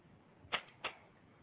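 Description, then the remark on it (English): A deck of tarot cards being shuffled for a caller's tarot reading: two quick, crisp papery swishes about a third of a second apart, with a quiet background and no talking. “But you're calling for another shuffle, so hang on.”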